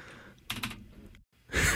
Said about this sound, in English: Hold on. I know one thing in Morse code. Click twice on your keyboard if you're here under duress.